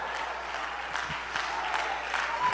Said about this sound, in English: Come on, clap your hands, all ye people. Woo!